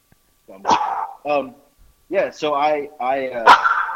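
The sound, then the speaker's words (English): A dog barks in several loud, short bursts, some yelping and drawn out, with brief pauses between them. “This fucking dog. Get out of here.”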